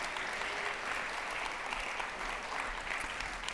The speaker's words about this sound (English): Let's give him a round of applause as we invite him up here.